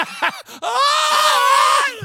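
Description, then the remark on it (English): A voice mimics screaming fans: a few short yelps, then one long, loud, high-pitched shriek held for over a second before it breaks off. “Everybody going to be screaming.”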